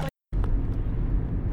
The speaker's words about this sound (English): So we're in the car post tattoo appointment